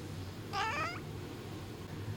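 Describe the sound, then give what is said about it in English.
A single cat meows once, a short, slightly strained cry lasting about half a second, over a low steady background rumble with no talking. “You pick her up and then she screams at you.”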